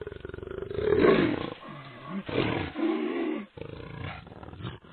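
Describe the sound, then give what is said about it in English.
A jaguar roars several times in close succession, deep rasping bursts with growly low tones, loud, with brief pauses between calls. “Now we turn from goats to jaguars.”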